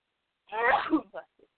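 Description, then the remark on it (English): A single loud sneeze bursts out sharply, followed by a couple of faint breathy after-sounds, then quiet. “Bless you.”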